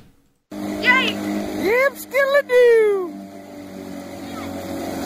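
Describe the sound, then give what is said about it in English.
A motorboat engine drones steadily on the water, its low hum running throughout while loud, excited voices of drunk people on the boat shout and whoop over it. “Are they towing a second boat?”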